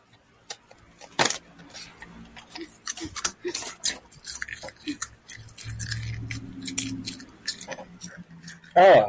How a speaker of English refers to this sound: Oh, that's me chewing styrofoam. That's not fun.